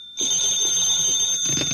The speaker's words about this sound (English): how come you're answering the phone?